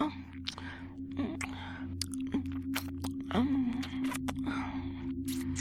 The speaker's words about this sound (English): Oh, feel me take it all. Feel me swallow it all. Gulping it down as you drain your balls into me.